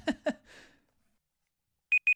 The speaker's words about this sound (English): Oh, that's the timer.